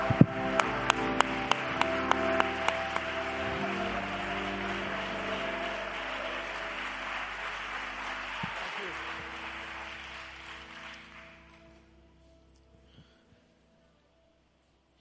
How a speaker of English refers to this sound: I know I'm provoking you to do things, but when you get there, would you just clap your hands unto the Lord?